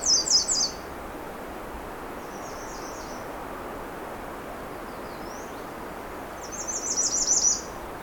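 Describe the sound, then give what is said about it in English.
A bird sings short, high warbling phrases: a bright burst at the start, a fainter one midway, and another near the end, over a steady hiss with no talking. “All of them short warbles.”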